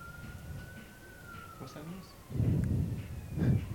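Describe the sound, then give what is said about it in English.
Sirens of two police cars hold a thin, steady wail that drifts slowly down in pitch, faint beneath low rumbling, muffled voices and a couple of louder bursts of noise toward the end. “Two cop cars.”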